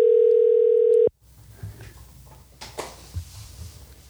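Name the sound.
phone call ringing tone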